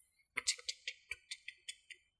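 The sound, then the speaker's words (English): A quick run of about ten crisp, bright keyboard clicks, unevenly spaced like fast typing on a clicky mechanical keyboard, with no voices. “Put on your clicky clacks, and then they'll be able to hear you listening to the typing.”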